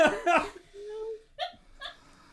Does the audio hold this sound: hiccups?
yes